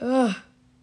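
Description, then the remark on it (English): A short, close voiced yawn that rises and then slides down in pitch, fading out after about half a second, followed by quiet. “Sorry, I yawned.”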